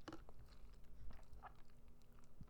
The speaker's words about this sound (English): Sorry, I'm taking a sip of my drinky drink.